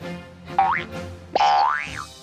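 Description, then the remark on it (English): Two springy boing sounds, each a quick rising and wobbling tone like a trampoline bounce, the second longer and louder, with no talking. “Trampoline.”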